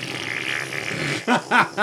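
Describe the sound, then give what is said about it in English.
A voice imitates a fart: a long, raspy, buzzing drone for over a second, then two short sputtering bursts with wobbling, bagpipe-like pitch. “Like a broken bagpipe.”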